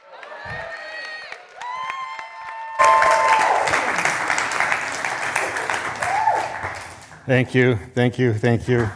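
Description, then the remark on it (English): A crowd bursts into loud, sustained applause mixed with cheers and whoops to welcome a speaker, rising suddenly after a few seconds of murmuring, then a voice starts talking over the tail end of the clapping. “And so I want you guys to welcome him with a huge round of applause”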